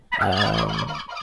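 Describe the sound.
A person imitates a turkey gobble, a loud, warbling burst of rapid throaty pitch wobbles lasting about a second, with a brief softer tail at the end.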